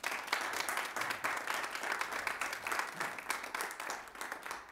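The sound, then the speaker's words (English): A crowd applauds singers after a song, a steady, dense wash of many hands clapping at once with no break, holding a fairly even, moderately loud level throughout with no voices standing out. “Let's give them another hand, y'all.”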